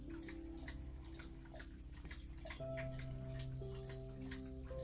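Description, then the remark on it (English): A pet, Logie, laps drinking water noisily, a quick steady run of wet slurps repeating every fraction of a second over a low, constant background hum. “Do you have to make that much noise slurping the water, Logie?”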